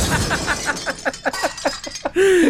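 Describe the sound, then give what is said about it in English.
A loud car crash sound effect: a burst of impact followed by a rapid cascade of shattering, tinkling glass pieces, ending with a high squealing tone. “But she crashed. She crashed.”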